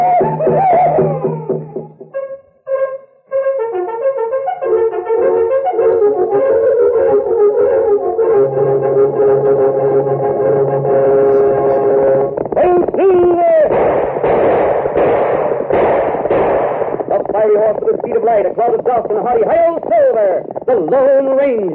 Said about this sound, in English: And when you hear that tom-tom rhythm, it means you'll get a kick out of kicks.